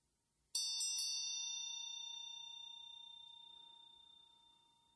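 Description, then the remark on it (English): A single bell is struck once, ringing out with a bright, clear tone that sustains and slowly fades over several seconds in an otherwise quiet space. “Each time the bell rings, let there be an embodied response.”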